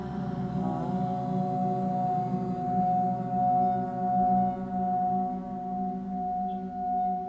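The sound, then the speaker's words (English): A steady, sustained vocal hum on an exhale during a guided breathing exercise, held unbroken for several seconds, moderately loud, with a rich, buzzing resonance and slight swells in volume, no talking. “As you watch the breath, let's sing hum together.”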